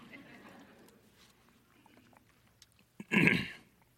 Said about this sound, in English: I'm getting so fired up, I got to have a little sip of water.